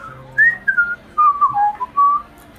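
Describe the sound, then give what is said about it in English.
A man whistles a short, wavering tune in place of playing a flute he cannot play, the notes sliding and breaking into separate phrases, fairly clear with no talking. “I was going to say, he gets his flute out and begins to whistle. He can't quite play the flute.”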